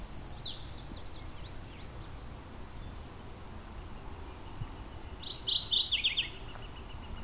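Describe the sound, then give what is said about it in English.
A chestnut-sided warbler calls twice from high in a tree: a short burst of bright, high-pitched chirps at the start, then after a long pause a louder, rapid trill, set against a steady low rumble of light wind. “So you think a bird this loud would be easy to find. High up in a tree somewhere here.”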